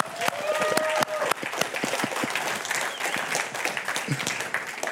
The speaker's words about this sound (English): We don't do golf claps. You know a golf clap? You can't even hear it. No, we do real claps here, right? Come on, let's give them a hand.